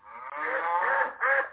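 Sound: cow moo sound effect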